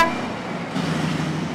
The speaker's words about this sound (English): massive trucks haul thousands of tons of coal daily to nearby plants